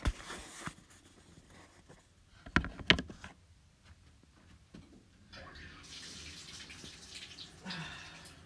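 Shower water splashes into a bathtub, with a brief hiss at first, a couple of sharp knocks midway, then a steady rushing spray that keeps running to the end.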